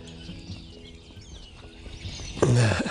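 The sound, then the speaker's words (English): A flock of birds, doves and starlings moving in big clusters near marshes, chatters in a steady, dense chorus of chirps and calls, with a louder, rougher burst of noise near the end. No one speaks. “All kinds of birds now. There are a lot of doves, a lot of starlings.”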